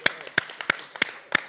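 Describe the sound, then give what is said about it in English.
An audience claps for the Lord in a steady, brisk rhythm, about three sharp claps per second, with softer scattered claps between the main beats. No one speaks. “Let's as we clap the Lord, let's give him a clap.”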